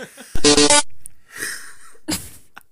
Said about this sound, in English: Damn. I haven't been this so sneezy since the potato famine. All right, that's better.